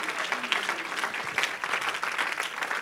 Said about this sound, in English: Can we clap our hands unto the Lord and give him praise?